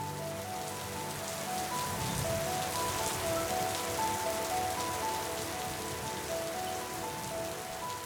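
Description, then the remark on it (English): Steady rain patters onto a hard surface, a dense, continuous hiss of drops with scattered sharper taps, even in loudness throughout, with no voices. “Well, the others call me Ray, and I'm a raindrop.”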